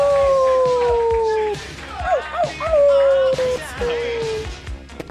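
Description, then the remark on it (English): A person imitates a wolf howl: a long, steady, slowly falling howl, a few wavering yelps, then a second drawn-out howl, with faint background voices. “Do the wolf. Oh! Yeah, that's a good wolf.”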